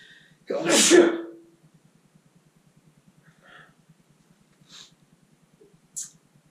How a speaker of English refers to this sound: We don't edit sneezes out here.